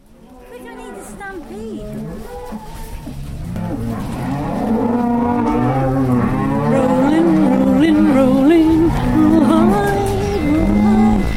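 Many cattle mooing together in a cowshed, recorded on 1 May 2009, overlapping low bellows building in loudness and continuing steadily, crowded, with a busy, echoing shed background.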